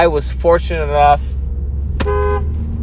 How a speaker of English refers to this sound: Sorry about the honk. That's some dumb fuck crossing a crosswalk that I stopped for him at.